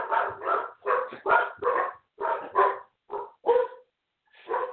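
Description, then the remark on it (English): Poodles bark in quick, choppy bursts, several yaps tumbling over each other in clusters with brief pauses between, mid-pitched and fairly loud, with no one talking. “And how much my poodles think it's time for dinner, because I usually feed them just after 5 o'clock. I think they're alarming because they're thinking it's dinner time.”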